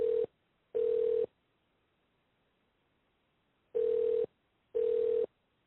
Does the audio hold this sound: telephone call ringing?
yes